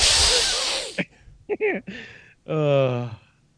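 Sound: voice imitating a hiss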